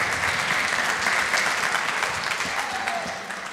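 An audience applauds steadily for a speaker after his message, a dense wash of many hands clapping at fairly even loudness that tapers slightly at the end, with no one speaking over it.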